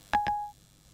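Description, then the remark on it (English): The Siri voice assistant's activation chime on a smartphone that has just been turned on: two quick electronic tones close together, bright, with a short ringing tail that fades within half a second. No one speaks. “let me just turn my phone on. Right, I'm going to try and see. Does Siri sound like Loco?”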